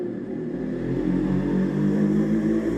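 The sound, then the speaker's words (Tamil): An RX100 motorcycle engine rumbles loudly and steadily nearby as a man rides it past, its low throaty drone swelling slightly as it revs and passes, with no voices over it. “ஒரு நிமிஷம், பக்கத்தில் ஆர்எக்ஸ் 100 வச்சுருக்கிற ஒரு அண்ணன் வந்து பயங்கரமாக சவுண்ட் விட்டு போகிறாரு, அவர் போயிருட்டோம்.”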